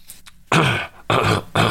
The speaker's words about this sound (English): Because you know what? We got other things to talk about after I take a break and clear my throat.